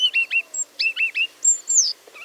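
A Siberian rubythroat, a small migratory songbird arriving in northern Asia, chirps in quick, high-pitched bursts, trilled notes repeated in short groups followed by a few longer, clear whistled calls, with no voices present.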